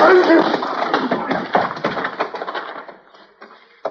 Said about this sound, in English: You can lay a man's head open, pistol whipping him like that.